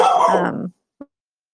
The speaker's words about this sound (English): Sorry about that. Doggy barky.